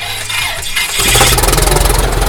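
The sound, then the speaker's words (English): An engine cranks for about a second with a rough, rattling churn, then catches and fires into a loud, steady running rumble with a rapid, even pulse. No voices. “Crank it up over there, bud.”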